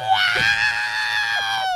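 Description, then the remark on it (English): A person imitates the shrill scream the robot droid R2 makes when he gets ejected: a single loud, sustained, high-pitched electronic-sounding wail lasting under two seconds. “Can you do that R2 sound when he gets ejected?”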